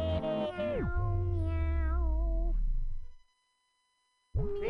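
A long, drawn-out cat meow with a wavering pitch, loud, followed by a brief silence before another meow begins.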